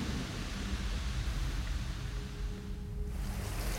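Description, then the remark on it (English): A heavy rainstorm pours down in a dense, unbroken roar, loud, with deep rumbling underneath and no voices. “The storm still raged, unforgiving, unwavering.”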